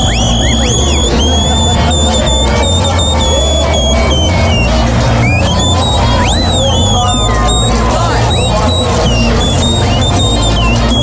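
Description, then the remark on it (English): Loud, shrill natural mouth whistling by a man, a super fan at games, that sounds like a referee's whistle: sharp, high blasts and gliding tones repeating over the steady roar and chatter of a crowd. “That's not like a whistle, no, like what the ref would that's use? That's the man's mouth.”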